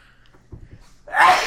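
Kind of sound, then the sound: human body sound, sneeze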